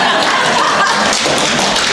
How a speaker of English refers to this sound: You can, some more of you can clap,